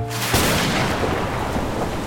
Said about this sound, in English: Maybe let's hang on until the rain clears, suggests Roscoe.